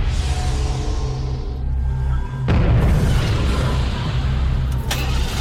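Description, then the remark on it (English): A low rumbling roar builds, then a sudden, loud explosion bursts out on a street in Los Angeles, followed by a sustained heavy rumble and crackling debris noise, powerful, with no voices. “Another explosion! People are scattered all over the street!”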